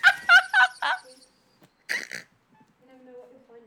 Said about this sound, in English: Oh, that bird. I'm all of a flutter.